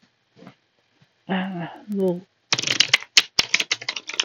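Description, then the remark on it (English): A short burst of quick, crisp papery flicks from a deck of tarot cards being shuffled, starting right after a brief bit of talking, with a few sharper snaps mixed in. “Then I'm going to do like a little fiver, and then I'll, jeez, my shuffling's just been off today.”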